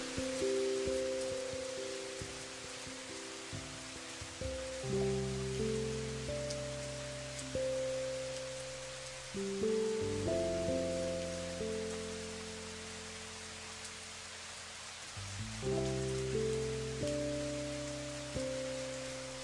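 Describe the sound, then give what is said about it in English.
Steady rain falls with a constant soft hiss, layered under slow, sustained synthesizer chords that shift every few seconds. No one speaks. “Bliss of rain.”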